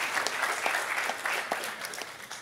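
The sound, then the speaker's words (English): Light, polite applause from a small group, a steady patter of soft claps at moderate volume with no voices over it. “Golf clap, it's telling you the truth.”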